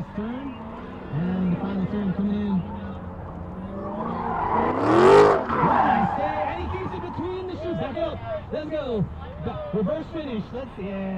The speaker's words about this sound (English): Yesterday, I watched several sports cars hit the track, a Mazda Miata, a yellow Corvette, and this black Dodge Challenger